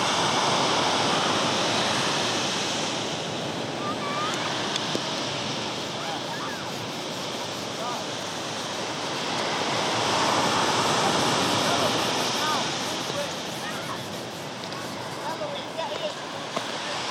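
Sea waves wash steadily onto the shore in a continuous broad roar, swelling louder twice as bigger breakers roll in, then easing back to a softer hiss.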